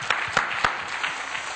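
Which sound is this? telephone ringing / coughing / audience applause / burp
audience applause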